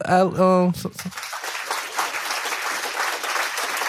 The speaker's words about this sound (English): Speaking of sports, do we have the round of applause?